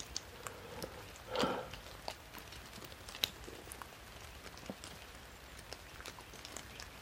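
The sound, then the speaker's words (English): Water drips steadily from the leaves of a tree overhead like light rain, though it is not actually raining, scattered drops pattering at irregular intervals, with one slightly louder rustling splash near the start; no voices. “The rain is under the tree and the dry is outside of it.”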